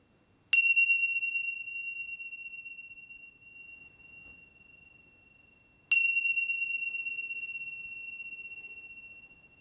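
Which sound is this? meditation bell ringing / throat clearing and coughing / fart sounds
meditation bell ringing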